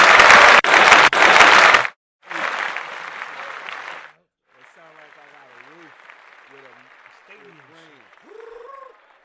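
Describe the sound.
A burst of loud, dense audience applause, briefly broken, then a second wave of clapping with cheers, settling into a softer patter of claps under several voices talking and calling out.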